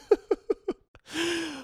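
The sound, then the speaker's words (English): A dog's snore, a short raspy noisy breath with a low droning tone, comes right after a quick run of four rhythmic, laugh-like vocal bursts. It sounds moderately loud. “My dog just snored right there.”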